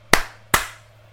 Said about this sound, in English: I'm gonna try and clap it back in. Hopefully that first one even registered. I mean, I can clap with. Oh, there you go. Okay, we'll clap again, man. Clap again.